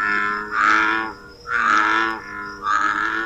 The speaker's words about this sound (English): And here's the bullfrog. Selected. Bullfrog.